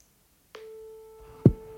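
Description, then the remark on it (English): A phone call's ringing tone, placed live to a man's house with poor signal, comes through as a steady electronic hum over the receiver, starting after a brief silence, with a short clunk near the end. No one speaks. “At least it's ringing.”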